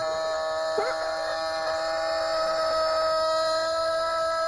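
A rooster crows in one long, loud, drawn-out call that rises sharply at the start, then holds a steady, strained tone to the end, with no talking.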